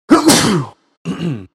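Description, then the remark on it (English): A loud, explosive sneeze with a sharp breathy burst, followed after a brief pause by a second, shorter voiced sound. No talking. “Bless you.”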